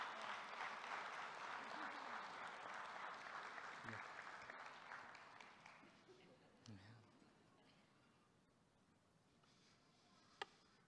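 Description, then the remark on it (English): A church audience claps steadily as people head back to their seats, a dense wash of applause that gradually thins and fades out over the last few seconds, with a few scattered claps and a sharp tap near the end. “And as they head back to their seats, let your applause be, thank you, Jesus, for working in people's lives.”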